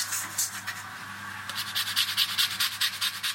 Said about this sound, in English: These are the sounds of a blood orange drizzle cake being made.